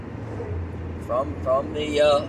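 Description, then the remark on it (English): A steady, low droning rumble of road noise inside a moving car on a road in Wisconsin, near Junction 21, runs throughout, with a person's voice speaking intermittently over it. “From the car. On the road in Wisconsin somewhere.”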